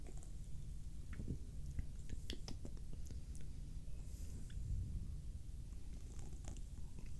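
Quiet sipping of a cherry-flavoured drink: soft wet slurps and small mouth clicks scattered over several seconds, then a gulp, with a low background rumble and no talking.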